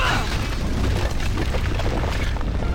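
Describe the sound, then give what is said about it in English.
A heavy, continuous low rumble with a crackling, gritty texture runs steadily throughout, like a video game earthquake attack by the character Minsk shaking the ground, with no voices over it. “Why is Minsk causing more earthquakes?”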